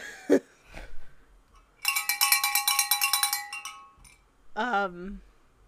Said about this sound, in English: Ring the bell.